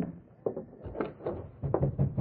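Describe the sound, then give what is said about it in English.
Someone raps repeatedly on a house's front door at night, a steady series of dull knocks that grows a little louder and quicker toward the end, with no voices. “Somebody knocking at the front door.”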